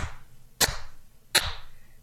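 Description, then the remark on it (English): Three sharp, crisp hand claps spaced evenly in a slow, steady rhythm, each a bright snap with a brief ringing tail, and no voices between them. “You clapping?”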